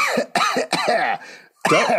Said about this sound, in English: Cough right into the microphone if you can.